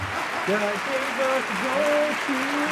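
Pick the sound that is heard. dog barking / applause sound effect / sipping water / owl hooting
applause sound effect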